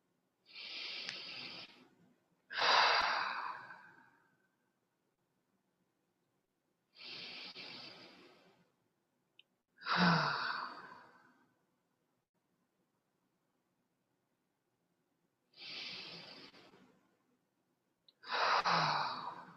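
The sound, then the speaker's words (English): Three slow, deep breath cycles, each a soft airy inhale through the nose followed by a fuller, louder exhale through the mouth, evenly spaced with quiet pauses between and no talking. “And I wonder if it's possible just to take a few deeper breaths, maybe breathing in through the nose and out through the mouth.”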